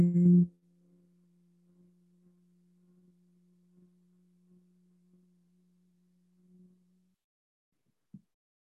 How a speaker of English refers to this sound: We're going to hum and move some energy through this throat chakra. Deep breath. Hum on exhale. Hum. Again, take a deep breath. Hum on exhale. Hum.